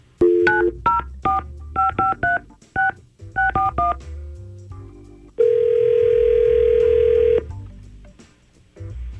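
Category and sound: signal or alarm, telephone dialing tones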